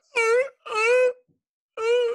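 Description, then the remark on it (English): A dog whines in three drawn-out, strained cries with a barking, seal-like quality, each about half a second long, with a pause before the last one. Loud and harmonic, with no talking over it. “You sound like a seal.”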